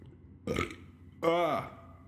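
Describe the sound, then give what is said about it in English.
Two loud burps: a short rough one first, then a longer, drawn-out belch with a falling, croaky pitch, separated by a brief pause. “I got the burps.”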